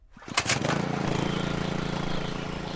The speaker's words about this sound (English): I was running a small piece of equipment that was running a little water pump about the size of a lawnmower engine. That's the volume of noise that it was making.